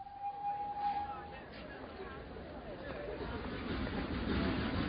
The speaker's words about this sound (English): I waited at the station at Kilchester for the train to take me back to Broadhinney. It was market day, and the platform was very crowded.